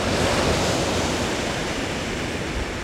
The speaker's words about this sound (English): And the rumble of a huge chunk of ice breaking off a glacier and causing large waves.